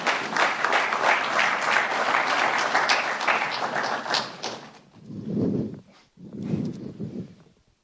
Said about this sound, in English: This is our second panelist, and with a round of applause, may we welcome him.